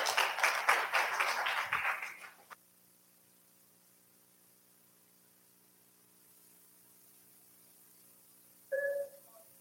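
A crowd's applause, dense and loud for about two seconds, fades out abruptly. A steady low hum follows in near silence, and a short, brief tonal sound occurs near the end.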